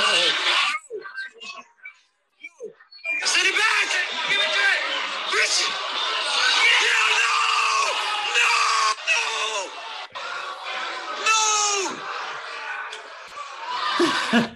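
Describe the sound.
A bar crowd erupts in loud, overlapping shouts and groans as Christian Pulisic narrowly misses a one-on-one chance, closed down by Ederson, starting from a quieter murmur of scattered voices, then holding a sustained roar with brief dips and swells.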